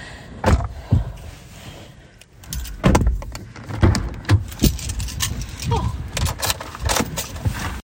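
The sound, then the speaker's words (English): Someone gets into a car: keys jingle, the door thuds shut with a few clunks and rustles, and an electric window motor whirs briefly near the end. “in the car.”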